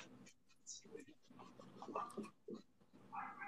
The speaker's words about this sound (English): I don't know who you're barking at. Oh, you're barking at the neighbor that's two houses down. You've got great eyesight, dog.